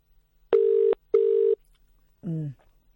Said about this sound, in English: It's an English ringtone.